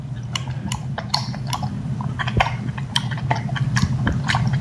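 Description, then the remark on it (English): A pig, tossed a piece of food, chews it with wet, irregular smacking clicks, a rapid series of sharp mouth sounds over a steady low hum throughout. “So they toss him a piece of food, and as he smacks on it, they pretend he's talking.”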